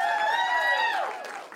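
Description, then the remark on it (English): A crowd of realtors, in the room and online, applauds, with a long, high cheer or whoop ringing over the start before the clapping carries on more loosely. “Can we give it up for all of the relators in the room and online?”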